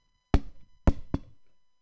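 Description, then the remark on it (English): Three sharp, solid knocks on a door: one knock, a short pause, then two in quicker succession, with nothing else audible around them. “Slack my cock against the door.”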